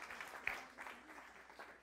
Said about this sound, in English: Would you just clap your hands to the Lord, Jesus? Denle un aplauso al Señor.